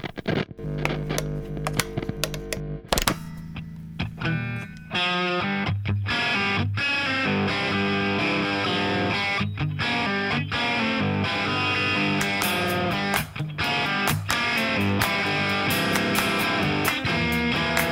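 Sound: echo effect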